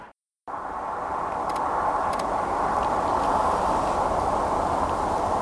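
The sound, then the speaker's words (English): A car on a country road approaches with a steady, broad rushing roar that builds gradually and then holds, with no talking over it. “It's another car coming.”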